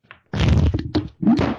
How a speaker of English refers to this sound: Fucking knocked over my mic. See what you made me do?